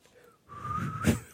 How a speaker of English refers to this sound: Maybe I can whistle. Is it the whistle song? No, not that whistle song.